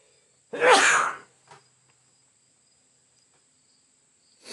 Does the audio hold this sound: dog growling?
no